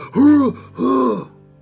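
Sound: imitated hacking cough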